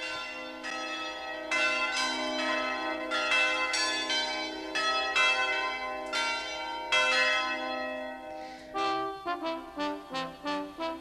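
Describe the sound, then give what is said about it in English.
Bells ring out in a steady sequence of rich, resonant strikes with long overlapping tones, shifting near the end to a quicker run of shorter, brighter peals, the opening of the film A Christmas Story. No voices are present. “The sound of the bells ringing in one more edition of Filmically Perfect on 91.3 WYSO.”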